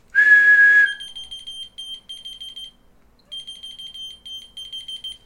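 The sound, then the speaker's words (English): A single loud, steady whistle blast sounds first, followed by a dollar-store Key Finder device responding to the whistle with rapid, high-pitched electronic beeping that chirps in quick pulses, pauses briefly, then resumes. No one speaks. “So it responds to whistle. And then you can find your keys. It's just literally called Key Finder.”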